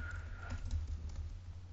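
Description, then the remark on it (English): Soft, irregular clicking of keys being typed on a computer keyboard to enter data into a spreadsheet, faint, over a steady low hum with no voices. “No, I'm typing in the spreadsheet.”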